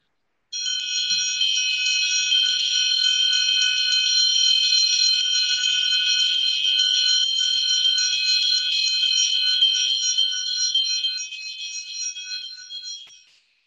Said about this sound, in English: And listen to this awakening bell that will bring you renewal and rebirth here and now.